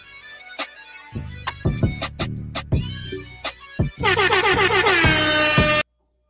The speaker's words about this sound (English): We got the air horns going on the video. We ain't got the live air horns today.